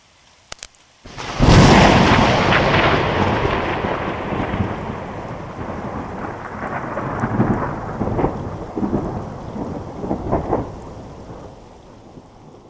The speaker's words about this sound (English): We've all experienced thunderstorms. Some of them are gentle with little lightning and rolling thunder, but others can produce devastating weather conditions with large destructive hail, powerful winds, and tornadoes.